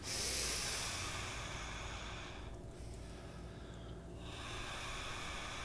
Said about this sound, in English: Breathing now. Yearning, breathing.